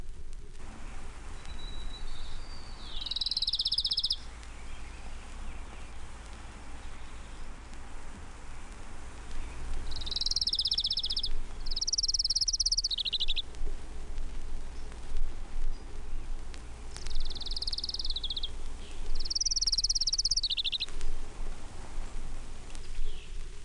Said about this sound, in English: Townsend's warbler.